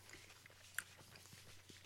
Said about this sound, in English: I'm going to save the rest of that for later. Are you? I'm eating all of mine. I just feel like we've done enough chewing.